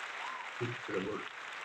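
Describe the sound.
A short round of applause: steady, dense clapping throughout, with a brief burst of voices calling out in the middle.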